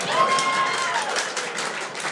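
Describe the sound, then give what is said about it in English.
An audience claps in a steady, dense wash of applause that holds for about two seconds, with a faint high whistle-like tone briefly rising over it near the start. “Stop clapping.”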